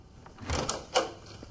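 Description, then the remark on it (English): A door swings open with a brief scraping rush of sound, followed by a sharp knock or latch click, fairly quiet, with no voices. “He's opening many a door in this episode.”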